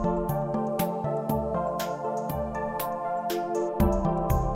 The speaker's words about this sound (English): That sound was the Walt Disney home video opening.